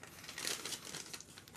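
Continuous crinkling of paper notes being handled, a dry rustling texture with small irregular crackles throughout, no voices present.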